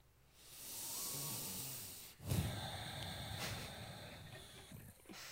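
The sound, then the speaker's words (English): A long, airy breath drawn in, followed by a second steady rush of breath lasting several seconds, with no talking; a person taking a deep breath. “And so then you took a deep breath. I took a deep breath.”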